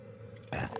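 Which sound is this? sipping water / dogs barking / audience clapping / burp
burp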